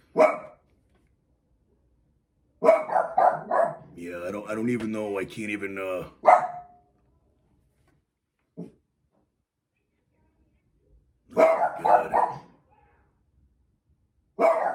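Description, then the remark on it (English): The speaker's dogs bark in loud, repeated bursts, including a sustained stretch of rapid barking, separated by pauses, with a person speaking briefly in between. “It's very hard for me to concentrate and to think over what I'm saying here until these guys quiet down.”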